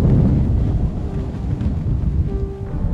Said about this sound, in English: And of course we're having a... That would be a pretty strong wind gust right there. Man. Hard to hang on in this.